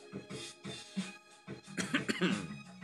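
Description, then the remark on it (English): A string of short coughs in quick succession, steady at first and then bunching into a louder, rougher cluster near the end. “See, I'm not around you when I cough, so you won't catch my germs.”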